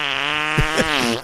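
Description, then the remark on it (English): A sustained, buzzy fart sound, likely made with the mouth, holding a steady raspy tone for just over a second with a few sputtering bumps near the end. It is fairly loud, with no talking. “It sounds too funny to be a real fart. It kind of does sound. It sounds like a mouth fart.”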